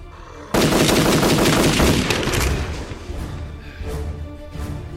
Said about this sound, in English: The gunshots! You called others here!